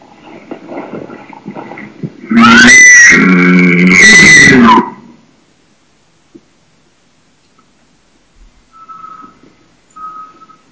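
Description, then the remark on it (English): A mature bull calls with one loud, drawn-out squealing cry of about two and a half seconds, a high whistled tone riding over rough, grunting lower layers. Two faint, short high notes follow after a pause. “You know, it adds to that persona that maybe we've got a mature bull up there.”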